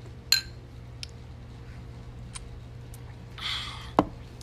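Glasses clink together in a toast: a bright ringing chink, a few faint taps, a short rustle, then a second sharp clink. No one speaks over the steady low hum.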